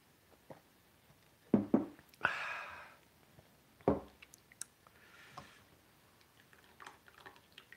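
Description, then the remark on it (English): Quiet sounds of drinking water: a few wet gulps and swallows in quick succession, a short breathy rush, then another swallow, with soft clicks and rustles. “Drink the water.”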